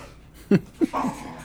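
A dog gives three brief whimpering whines in quick succession, with soft breathy sounds around them and no talking.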